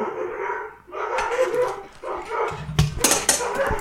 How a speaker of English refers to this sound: Oh, my neighbor's dog.